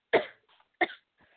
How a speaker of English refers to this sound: I'm coughing.